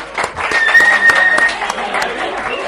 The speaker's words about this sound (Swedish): En applåd